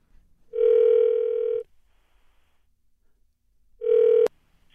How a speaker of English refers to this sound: We could try calling her up right now. Maybe you could talk directly to her. We need to call her. We got to immediately. We got to get on top of this. Get her on the phone. Okay, let's dial her up.